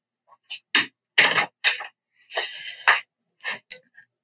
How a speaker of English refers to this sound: one second, let me close my door. Someone opened it.